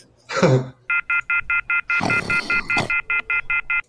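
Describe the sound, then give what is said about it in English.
A telephone off-hook warning beeps rapidly and steadily, about four loud electronic pulses per second, with a couple of harsh, rushing noise bursts cutting in over the beeping. “And then in the intervening, like, 30 seconds before the phone starts to beep, because it's off the fucking...”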